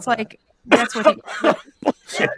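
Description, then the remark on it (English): A loud run of about five rough, voiced coughs and throat-clearing bursts in quick, uneven succession, with a short pause after the first. “likes to cough and call bullshit instead of just saying bullshit”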